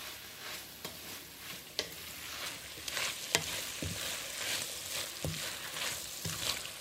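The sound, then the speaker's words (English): Shredded chicken and vegetables fry in a pan for a few minutes with a steady hiss, broken every second or so by the clack of a utensil stirring and mixing them. No one speaks. “So I'm going to add the shredded chicken to the vegetables. I'm going to fry that for a few minutes.”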